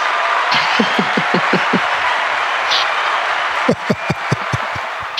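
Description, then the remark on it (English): Crowd applause: a steady wash of clapping with rhythmic low thumps, like stomping, in two bursts of quick, evenly spaced beats. Fairly loud throughout, with no voices. “That one's really getting the crowd going.”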